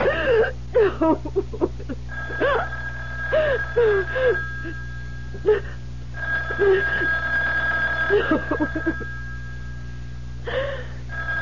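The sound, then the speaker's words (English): A telephone rings in steady, high-pitched bursts, repeating several times, while someone whimpers and gasps in short, shaky breaths between and over the rings. “You know you have to answer, darling.”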